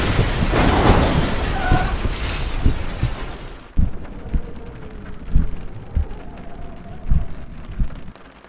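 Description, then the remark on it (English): A truck tipping over and crashing down on its side makes a loud, roaring crash that fills the first few seconds, then cuts off sharply into a steady patter of rain pelting through a shattered window, broken by occasional heavy low thumps. “the truck tipped over and came crashing down on the”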